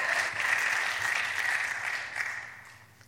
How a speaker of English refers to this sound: Amen? Give God a hand clap on that, because he's worthy. He's worthy.